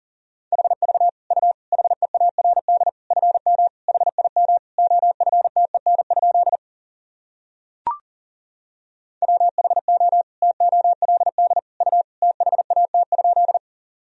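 Fast Morse code at 40 words per minute sending practice sentences from the top 400 words and abbreviations: a single mid-pitched tone keyed in rapid dots and dashes, played in two long runs separated by a pause with a brief click.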